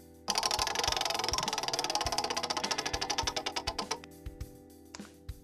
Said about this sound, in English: Spin the wheel of moderately interesting things.